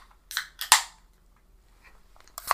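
Beer cans cracking open: a quick series of sharp metallic snaps, one trailing into a brief fizzy hiss, then a pause and another crisp pop at the end. No talking.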